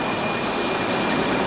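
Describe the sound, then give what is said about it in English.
Two old, dirty trucks full of rock, one blue and one red, creep slowly over a cobblestone street in San Sebastian, a steady, loud engine rumble mixed with broad rattling noise and a faint high whine, continuous throughout with no talking. “There's my two trucks just barely creeping by. One blue one full of rock.”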